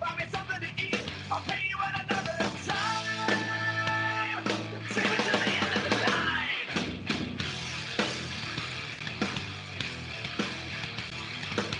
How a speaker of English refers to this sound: Okay, yeah, I liked that one. Yeah, that was like. That was like new metal-ish with a bit of pop punk, kind of.